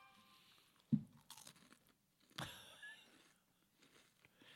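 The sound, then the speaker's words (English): Off-brand flat round crisps being crunched and chewed on a microphone, with a sharp bite near the start and a second loud crackling crunch after, followed by softer chewing sounds; no talking. “It's off-brand crisps. It's okay. Flat rounds.”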